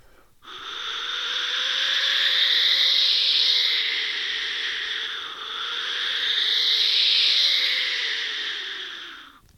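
An Aztec death whistle blown in two long, continuous blasts, each a harsh, breathy, screaming tone that swells and fades, its pitch bending slightly up and down, with no voices.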